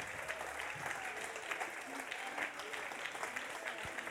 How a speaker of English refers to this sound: And I think after three, all of these guys should take a big bow and we should give them a big, huge shout and a round of applause. One, two, three. Come on, guys, take a bow. Wonderful. And let's continue to applaud them as they leave the stage.